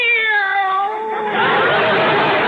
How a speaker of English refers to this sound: Meow. This cat is dog happy.